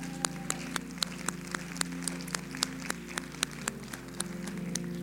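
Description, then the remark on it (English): Church audience applause for those who served in the United States Army, thinning into sharp, scattered hand claps that land a few per second over a steady low sustained tone. Moderately loud, with no voices. “Would you guys give them a round of applause?”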